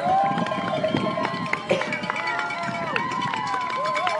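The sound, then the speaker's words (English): An enthusiastic crowd cheering at the finish line of a ride, at the end of a 111-mile day: a steady, loud wash of many voices with scattered whoops, shouts and high, wavering calls rising and falling throughout. “You can tell the crowd gets pretty enthusiastic here right at the finish.”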